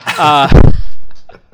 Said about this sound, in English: Like, these are high quality books you're doing with really a lot of production on it, and quite large. Banging a book on the table so people get an idea.